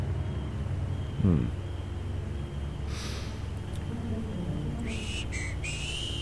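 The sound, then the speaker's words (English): A man, a Cossack general, whistles a tune: a few short whistled notes, stepping between pitches near the end, over a steady low rumble of background noise, with a brief snort-like puff earlier. “He smiled, whistled a tune, very deliberately blew a smoke ring into the air.”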